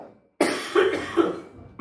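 A loud burst of coughing: a string of harsh, raspy coughs in quick succession, with a short silence before it starts and no talking.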